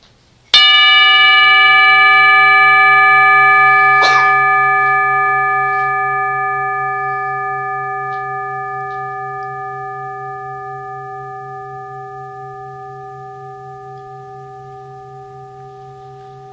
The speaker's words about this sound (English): So, I want you to, first of all, pay very meticulous attention to the sound of the gong. And notice, it is constantly coming into being. Constantly new.